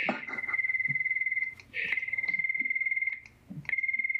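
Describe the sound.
A close, loud imitation of a cricket chirping: a high, steady, rapidly pulsing trill in three long bursts separated by brief pauses, with no talking.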